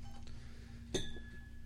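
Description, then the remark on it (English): A single bright glassy clink rings out over a low steady hum, its tone lingering briefly before fading, like glasses knocking together as Johnnie Walker whisky is poured. “So pour that in the other three glasses.”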